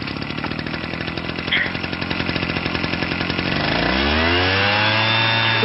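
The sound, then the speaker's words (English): A leaf blower's small engine chugs loudly, its rapid pulsing steady at first, then revving up into a rising, sustained whine for the last couple of seconds. “All right, well, my leaf blower's on.”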